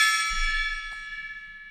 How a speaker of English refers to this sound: This was because Kirsty bought a gong.